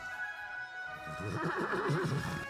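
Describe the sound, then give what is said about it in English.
A horse whinnies loudly, its call starting as a steady high tone and then breaking into a quavering, shuddering neigh that carries on to the end. No one speaks. “Come on, you stupid horse.”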